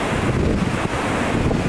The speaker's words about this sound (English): Now, what I decided to do is I pull real quickly, and let's show this, an image of an actual storm on the Sea of Galilee. Today, this is a typical storm.